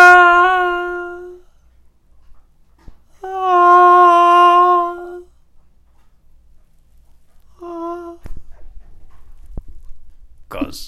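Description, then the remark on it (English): Misbehaving pet dogs howl in three drawn-out, steady, high-pitched cries, the middle one loudest and longest and the last a brief whimpering note, followed by soft shuffling and clatter. “We're trying this conversation from a separate room because our dogs are being complete...”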